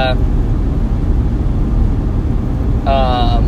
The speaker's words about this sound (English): Right now I'm in my car, and I do think I'm getting a little louder than I used to be.